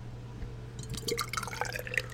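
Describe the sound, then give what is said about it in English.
A purple tart sour beer pours into a glass, starting after a short quiet pause with a bubbly, splashing gurgle and fizzing that carries on steadily to the end, fairly soft over a faint low hum. “Pours a nice purpley color. Just like blueberries.”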